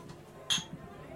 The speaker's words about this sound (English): Now I'll take my glass and kind of cheers him.